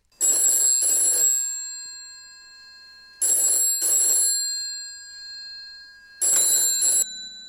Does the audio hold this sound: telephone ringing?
yes